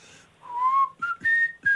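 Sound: person whistling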